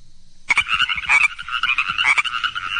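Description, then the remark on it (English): A dense chorus of chorus frogs calling together at night on a pond, a continuous overlapping trill of rapid, rising creaks, loud, starting abruptly after a brief quiet moment. “Nighttime came, and this is what it sounds like on the pond. Chorus frogs.”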